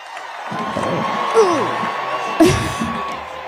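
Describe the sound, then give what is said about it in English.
A crowd cheering and whooping, a dense roar of many voices with rising and falling pitched shouts and a sharp burst of louder whoops partway through. “The crowd got like louder.”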